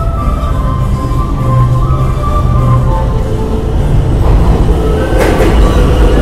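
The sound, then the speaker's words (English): An E subway train rumbles loudly into a station, its deep steady roar filling the space, with a brief metallic screech of brakes near the end and no voices. “Yeah, that's an E. E doesn't help.”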